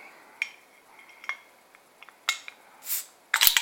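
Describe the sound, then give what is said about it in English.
A gold bottle cap is pried off with a De Heidenbruge bottle opener from the Netherlands: a few light metallic clinks and taps, then a brief fizzy hiss and a sharp, bright clatter as the cap comes free. “And as always, my De Heidenbruge bottle opener, the Netherlands.”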